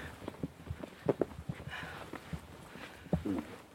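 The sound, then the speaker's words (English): Irregular footsteps crunch over leaf litter and twigs on a woodland floor in darkness under overhanging trees, a steady walking pace with a few louder, heavier steps, otherwise quiet. “What's the matter? Footsteps.”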